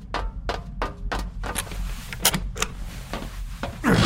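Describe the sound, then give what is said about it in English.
A series of sharp, irregular clicks and taps as codes are punched in one after another, followed by a heavier mechanical clunk at the end as a lever is pulled, to secure the chosen location of a nuke. “You must insert those codes and pull the lever to your right to secure what you choose where the nuke will be.”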